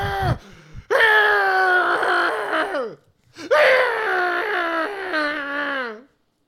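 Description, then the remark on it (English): Two long, strained, acted vocal outbursts of anguished screaming and groaning, as of a man whose face is pierced and sewn by vines, loud, each wavering in pitch before trailing off, separated by a brief pause. “you hear Double D screaming in agony”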